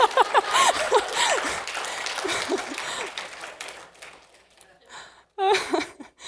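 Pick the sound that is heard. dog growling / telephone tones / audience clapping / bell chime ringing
audience clapping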